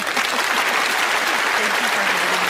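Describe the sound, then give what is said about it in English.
A studio audience on the show Saugatuck on Sunday claps for a guest from the Lakeshore Pet Boutique in a steady, dense round of applause, loud and continuous for the whole stretch, with the bright crackle of many hands blending together and no pauses. “And would like to give you a big round of applause if I could get the audience's attention.”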